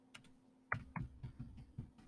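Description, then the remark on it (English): Soft, muffled typing on a keyboard fitted with a new yellow silicone jelly keyboard sleeve, with dull, padded keystrokes in an irregular rhythm, fairly quiet, heard on its own for a couple of seconds. “I got a new keyboard sleeve. You know those like little jelly things you can put on your keyboard?”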